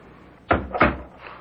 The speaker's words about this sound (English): Bolt your door. And do not leave this room till I come for you in the morning.